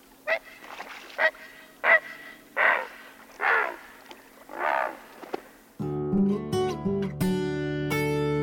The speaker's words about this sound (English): it's fitting that we would end this season's Nature Sound with one of your very favorite birds, the great blue heron